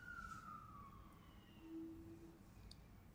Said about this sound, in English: But just being receptive and listening, like listening to the fire truck or whatever's going there.